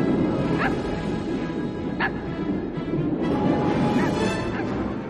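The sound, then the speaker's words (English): A small dog, Zero, Jack's little ghost dog dressed as a reindeer, gives several short, high yips and barks, spaced a second or two apart, over a constant busy, rumbling background. “And what to your wondering eyes disappears is Jack's little friend Zero, the ghost dog reindeer.”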